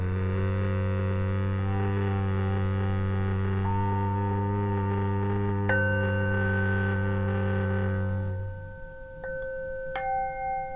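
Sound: humming on the exhale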